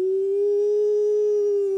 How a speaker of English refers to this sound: And then the one on this side, ooh, and they'll do that for about 2 or 3 hours. Big low-pitched, lowest howl on a dog you've ever heard. Low tones.